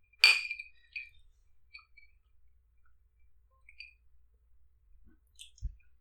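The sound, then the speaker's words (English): A bright clink of glasses of Lagavulin whisky rings out near the start in a toast, followed by a few softer, scattered taps and small clinks of glassware, otherwise quiet, with a low thud near the end. “Sweet, sweet Lagavulin. Such an interesting piece of liquid.”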